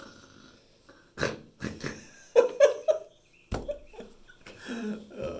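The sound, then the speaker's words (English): A voice imitates snoring with a run of rough, snorting inhales and breathy, gravelly exhales in uneven bursts, moderately loud and with no words spoken. “you hear the snoring go.”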